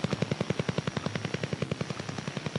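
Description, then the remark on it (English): Woodpecker interference from a Soviet Cold War over-the-horizon radar, heard on the AM radio band: a steady, rapid tapping of harsh buzzing pulses, about ten per second, repeating evenly over a hissy radio background with no one speaking. “You would be sometimes drowned out by the woodpecker.”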